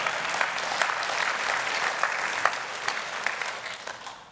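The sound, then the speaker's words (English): An audience claps steadily for about four seconds after hearing that over 80 students came to faith in Jesus Christ on the University of Texas campus, a dense patter of many hands with a few sharper claps standing out, tapering off slightly at the end. No one speaks. “Yeah, you can clap.”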